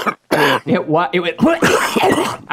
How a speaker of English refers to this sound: Madge loved it when Roger Ailes spit and drama cough in that hanky.